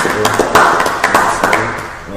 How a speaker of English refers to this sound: We got a first time guest. Let's clap it for the first time guest.